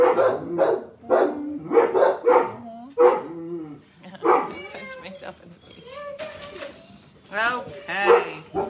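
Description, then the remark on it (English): Several dogs bark in quick, overlapping bursts, loud and insistent, with a few higher yips and whining sounds mixed in between the barks. “Welcome to Tipsy Tuesday, the most annoying show on the internet, because all the dogs have a mouth right now.”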